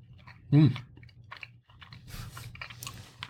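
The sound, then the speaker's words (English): Moist chewing of a piece of steak, with soft squelching bites and mouth noises continuing unevenly, plus one brief louder murmur near the start. “All right, I already ate it and swallowed it here.”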